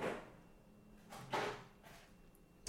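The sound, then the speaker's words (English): The top drawer of a freezer slides open with a scraping rush of noise, preceded by a softer rumble and ending in a small clack, with no one talking. “It's in the freezer, lad. Top drawer.”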